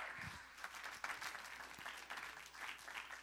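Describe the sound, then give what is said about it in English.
An audience claps together, a dense, steady patter of many hands filling the whole stretch at moderate loudness, with no voices standing out above it. “Now clap if you know I'm telling you the truth.”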